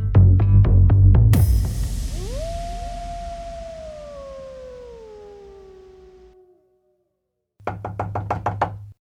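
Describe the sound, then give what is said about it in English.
Rapid knocking on a professor's wooden room door, a tight series of hard raps, then a long wailing tone that slides down and fades, before another quick burst of knocks. “The scream had sounded like it belonged to the professor, and he wasn't answering when we knocked on his room door.”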